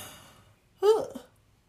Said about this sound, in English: Okay, yawn number two.